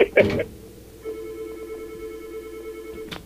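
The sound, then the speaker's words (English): A brief burst of noise, then a steady electronic telephone tone sounds for about two seconds as a caller phones in to a radio studio line, clear and moderately loud, ending with a short click. “He's calling in right now.”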